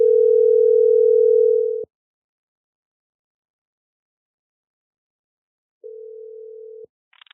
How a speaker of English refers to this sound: Phone call very loud. Man, I have to turn to take off one of my ears.